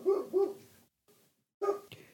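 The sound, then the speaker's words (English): A dog barks in short bursts from under a porch: two quick barks, a pause with a faint yelp, then another bark, with no talking. “Do you hear my dog barking?”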